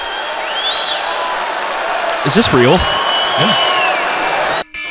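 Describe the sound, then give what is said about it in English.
A large crowd at a Donald Trump rally in Milwaukee applauds and cheers in a steady, dense roar for several seconds, after his promise of new dishwashers, with a man's voice briefly speaking over the noise before it cuts off abruptly near the end. “What the fuck is the applause 10.”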